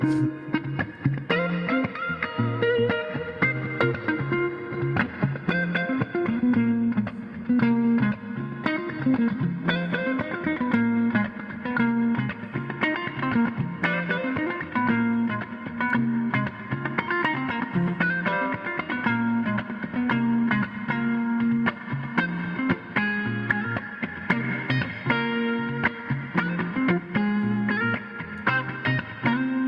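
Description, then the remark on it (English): An electric guitar plays a steady, sustained passage drenched in amp reverb, with rich harmonic tones and a lingering wash that continues throughout without any voices. “Oh my god, bro, I dig that reverb so much.”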